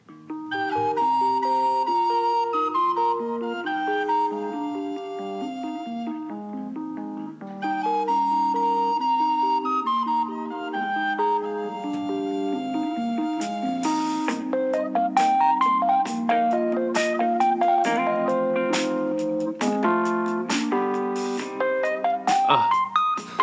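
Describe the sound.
The theme tune of the TV sitcom The Wonder Years hummed without words, a steady bouncy melody of sustained notes rising and falling, fairly loud throughout, with sharp clicking accents in the later half.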